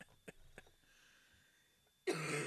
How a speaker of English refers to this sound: Excuse me. Now I can't stop coughing.